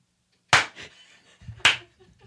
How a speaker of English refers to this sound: Darling, that robotic arm is clapping wonderfully. Can you hear it from here? Yeah, it's really loud. It's actually like as loud as if you were right here because the steel really